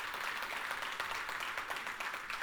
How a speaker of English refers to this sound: So Wakala and Fairhope, thank you for allowing me to take that step of faith. Because I mean, it was, yeah, that's right, applaud them, welcome them.